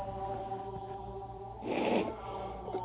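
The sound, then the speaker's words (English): A single short, muffled cough bursts out midway through, set against a steady, low mechanical hum that drones throughout; no one speaks. “Excuse me, I've been trying not to cough the whole time that thing's been going.”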